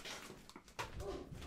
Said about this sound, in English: Hold on. This dog's driving me insane. Hold on. I got to go yell at her.